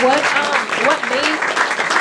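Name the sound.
applause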